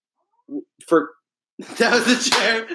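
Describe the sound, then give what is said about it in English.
A chair gives a few short, high squeaks, then a longer, louder creaking groan with a raspy, harmonic tone that lasts about a second, somewhat like a cat's meow. “I swear to God, it's part of the chair.”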